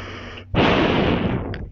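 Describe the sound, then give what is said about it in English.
Breathing into a microphone held up to the mouth, a soft hiss that swells into a long, loud, rushing exhale of airy noise lasting over a second. No one speaks. “This is me holding up to my mouth. You might hear me breathing.”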